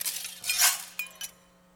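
A sheet of glass smashes in a bright burst, followed by a few scattered tinkles of falling shards that quickly fade. No voices accompany it.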